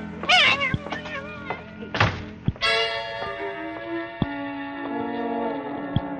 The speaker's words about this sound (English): She's meowing and stamping around here like a herd of elephants. Will you take that cat outside?